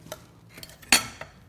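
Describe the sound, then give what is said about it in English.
A cocktail shaker with ice clinks and rattles in a few sharp, irregular bursts, with one louder jolt near the middle; fairly quiet, with no voices. “Shake it up. And once you have it all shaken up, you gotta really have strong muscles for that.”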